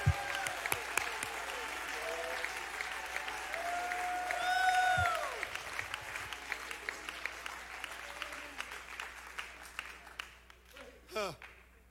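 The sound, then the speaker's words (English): A church audience claps steadily with scattered shouts and cheering voices rising over the applause, lifting their voices to the Lord during a sermon, swelling in the middle before thinning out, ending with a single sharp rising whoop. “Oh, somebody clap your hands and lift your voice to the Lord right now.”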